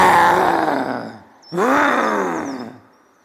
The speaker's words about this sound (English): He raised his hands and let out a huge roar to scare away the animal.